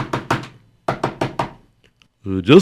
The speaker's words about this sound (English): He knocked on the door.